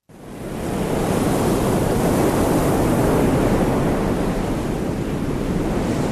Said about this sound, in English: The long and usually gentle waves at Watego's Beach make it a popular spot for surfers of all ages and abilities.